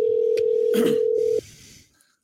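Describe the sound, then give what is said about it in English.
A steady electronic ringback tone sounds for over a second on a phone line, with a few clicks and a brief rustle partway through, then cuts off into quiet hiss. “Oh, I'll call through the phone. I got the phone number.”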